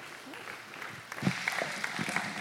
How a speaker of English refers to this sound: And so would you please give him a round of applause, because if not, he will beat you up.